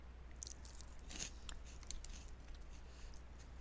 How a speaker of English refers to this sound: Okay, so what you're eating is crunchy. Yeah.